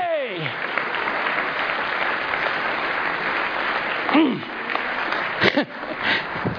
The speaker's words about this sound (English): Are you happy? Amen. And you know it, clap your hands. Glory!